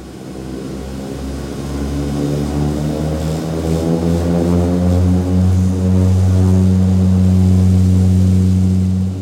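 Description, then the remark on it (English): A Coast Guard propeller plane's engines drone loudly and steadily during takeoff from Miami Opa-locka Executive Airport, their pitch climbing as power builds, with a continuous rumbling roar and no voices. “We take off on a Coast Guard plane from Miami Opa-locka Executive Airport, and in minutes, we're cruising above deep blue waters.”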